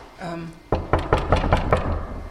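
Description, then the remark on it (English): A brief voice fades out, then a hand raps on an office door in a corridor: about seven or eight quick, firm knocks in a steady rhythm, each sharp and loud. “If you don't mind, I'm going to knock on the door and just see if there's anyone here today.”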